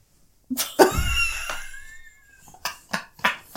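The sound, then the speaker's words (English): A burp with a rough, throaty start that stretches into a drawn-out, wavering tone, followed by three short, sharp bursts of breath. No one is talking. “Sorry, I just let out a little burp there.”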